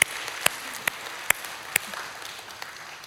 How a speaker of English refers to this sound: Applaud for just a minute. Do it at all our campuses. If you're in San Jose, if you just hear that sound, right?